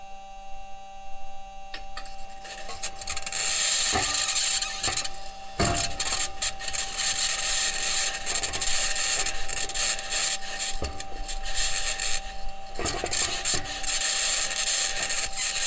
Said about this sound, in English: Okay, so that's what Mars sounds like if you're on the Perseverance rover with a microphone driving on the 6 aluminum wheels across the surface. Very, very bizarre.